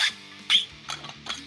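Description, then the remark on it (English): A squeaky plastic bottle being squeezed: two sharp, high-pitched squeaks followed by a few crinkly, crackling bursts, with no voices. “That was the worst ASMR you could have possibly done. The squeaky bottle wound?”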